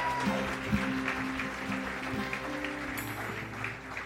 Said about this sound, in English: Give him a round of applause one more time